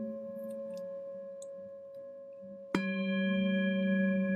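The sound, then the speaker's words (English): A meditation chime is struck once, its bright attack blooming into long, steady ringing overtones that layer over the fading hum of an earlier tone. No voices are heard. “Allowing the sound of the chime to call you back from your meditation.”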